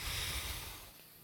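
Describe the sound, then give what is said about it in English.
A single airy exhale through the nose during a breathing exercise of breathing in, pinching and breathing out, a soft rushing breath that starts fairly strong and gradually fades away over about a second, with no talking. “So you breathe in, hold it, pinch it, and then release, then breathe out, breathe in, pinch it, breathe out, with it one more time, breathe in, pinch it, breathe out, and then actually one more time, breathe in, pinch it, breathe out.”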